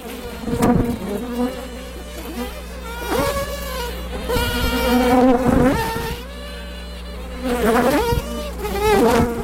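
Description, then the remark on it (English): A dense, high-pitched buzzing of many worker honeybees swarming, signaling the queen that it is time to fly to a new home; a steady droning hum with rising and falling whines layered over it and no voices. “That high-pitched buzz is the sound of worker bees telling the queen it's time to fly to a new home.”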